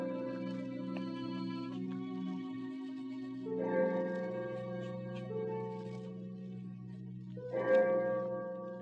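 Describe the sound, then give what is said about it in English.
The clock of St. Jude's strikes slowly in the distance at 4 o'clock, each deep, resonant bell stroke ringing on and overlapping the next, with about three strokes heard and no voices. “I had no idea how long I worked until I heard the clock of St. Jude's in the distance.”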